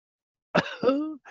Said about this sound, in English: I want to cough.